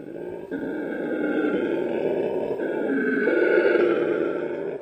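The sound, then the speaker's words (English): A howler monkey roars in one long, deep, rasping call that holds steady and loud for about five seconds, with a slight swell near the end and no talking. “So it seems the howler monkey just can't have both.”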